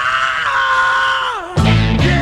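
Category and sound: human body sound, scream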